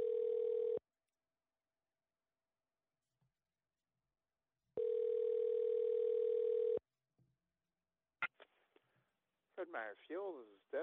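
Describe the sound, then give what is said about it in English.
A loud, steady telephone dial tone sounds briefly after the other party hangs up, goes silent for several seconds, then returns for about two seconds before cutting off, followed by a person beginning to talk. “He's put the bloody phone down.”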